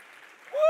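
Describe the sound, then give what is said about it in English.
A church audience, on their feet, claps in a steady wash of applause and shouts unto the Lord, then a voice breaks in with a loud, rising cheer that swells to the end of the brief moment. “Jump to your feet, clap your hands, and shout unto the Lord.”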